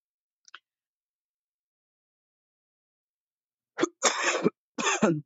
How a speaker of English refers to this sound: I'm going to have to edit that cough out. I caught a bug from my brother's kids. And so who knows if I'm going to edit it out. I'm going to try.